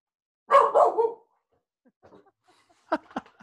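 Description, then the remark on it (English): A dog barks excitedly after the doorbell rang, a quick run of three loud barks, then a brief lull with faint whines before two more sharp barks. “My dog is very excited about yeah, hey, can't wait.”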